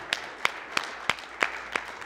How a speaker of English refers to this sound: Come on, give Him a hand clap of praise together today.